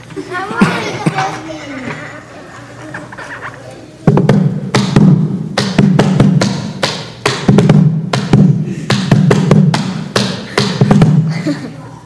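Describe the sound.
Someone drums on a plastic bucket, a quick, steady run of loud, hollow thumps and sharp taps, following a few seconds of quieter sounds and faint voices.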